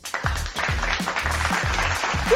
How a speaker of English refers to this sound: Hello, hello, and welcome to episode 2 of Mad Chatter podcast. Hold for applause.